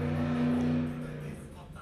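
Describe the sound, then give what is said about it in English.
A car engine roars loudly outside with a deep, steady rumble that holds for about a second, then fades away as the vehicle moves off. “Shit, always a stupid car. Trying to act like if it was a race car when you're not.”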